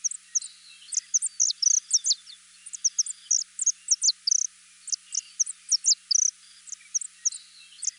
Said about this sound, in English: The saffron finch is a golden yellow songbird that can be commonly seen in small flocks on lawns and other grassy and shrubby areas on Hawaii Island and Oahu.